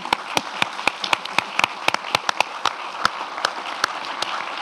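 An audience breaks into a steady round of applause, many hands clapping in a dense, even patter with sharper individual claps standing out throughout; no one speaks over it.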